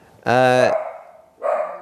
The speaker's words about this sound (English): Oop, some barking here. I apologize. I am dog sitting at the moment. And one of them has a hair trigger when it comes to the barking.